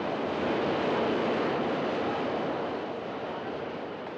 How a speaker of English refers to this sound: Oh, do you feel the breeze from the subway? Isn't it delicious?